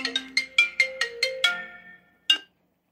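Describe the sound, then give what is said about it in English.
A mobile phone ringtone plays a quick series of bright, bell-like electronic notes at a steady rhythm, fades out, then gives one more short tone. No one speaks. “Oh, hold on, it's my phone.”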